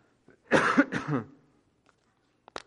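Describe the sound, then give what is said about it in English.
Two strong, harsh coughs in quick succession, followed by a quiet pause and a short throat-clearing catch at the end. “I hate coughing these days.”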